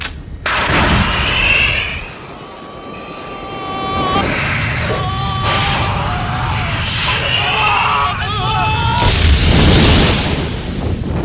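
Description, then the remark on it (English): In a film's ending, a missile goes through a building and explodes into a helicopter: heavy booming blasts and a deep rumbling roar, laced with high whining tones, swelling again toward a loud burst near the end. “I just love how this missile goes right through this building and into that helicopter.”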